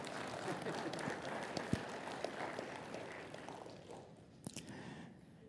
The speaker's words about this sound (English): Yeah, it's okay to clap.